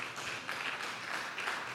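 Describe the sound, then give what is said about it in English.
A crowd of people clapping for Jesus in a steady, dense burst of applause, fairly loud and continuous with slight swells, no voices on top. “Oh, clap for Jesus. Clap for Jesus.”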